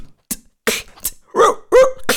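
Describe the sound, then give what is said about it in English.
A person imitates a dog barking in a rapid-fire sound imitation game, loud, with a quick run of short, breathy bursts ending in two fuller, voiced woofs. “Dog.”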